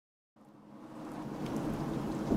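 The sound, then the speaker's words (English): Steady pouring rain on a night in West Virginia fades in from silence and swells into a dense, continuous hiss, with a low thunder-like rumble underneath. No voices. “It starts on a rainy night in West Virginia.”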